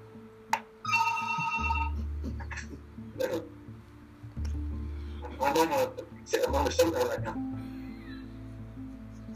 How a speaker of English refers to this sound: Needs to prioritize somebody to answer his phone.